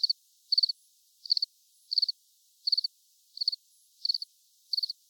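Steady cricket chirping, alone and fairly quiet: eight evenly spaced bursts, each a quick trill of three or four high pulses, repeating about every two-thirds of a second against silence.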